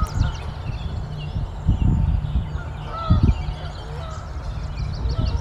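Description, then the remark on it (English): A few faint honks from a couple of Canada geese flying overhead across an open outdoor space, irregular and scattered, with low rumbling gusts of a very light breeze underneath and soft calls of American robins and warblers in the background. “Hear some American robins, the other warblers, just a couple Canada geese going overhead.”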